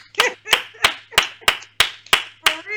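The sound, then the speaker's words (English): Eight sharp hand claps in a steady, even rhythm, each one loud, with no talking in between. “I want to clap again.”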